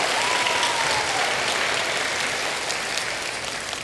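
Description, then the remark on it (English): A crowd applauds steadily for someone who has just read a scripture passage, dense overlapping claps forming a loud, even wash of noise that holds for several seconds and tapers slightly at the end. “You give her a round of applause.”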